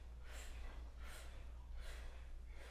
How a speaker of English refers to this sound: Exhale, pulse. One, two, three, four, five. You keep breathing out and creating some sound and see if you can come together.